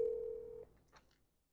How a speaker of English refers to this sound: let's go ahead and dial him up here real quick. He's on my favorites. So here we go, you know. hear it ringing, dinging. Hopefully he answers.